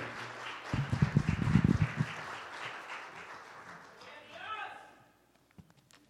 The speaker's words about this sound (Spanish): Agradecemos a Dios por su vida y bueno es el Señor, amén, que tenemos un pastor que está listo para dar palabra a su pueblo. Recíbalo con un aplauso, iglesia. Aleluya.